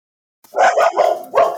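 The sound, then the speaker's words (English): Puppies bark in a quick burst of several yappy, overlapping barks, loud and bright, after a brief moment of silence. “They have to get used to hearing your voice again. Hi, puppies.”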